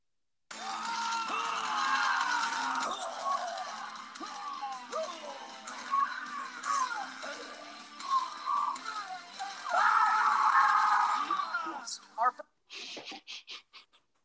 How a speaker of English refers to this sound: Few screams there.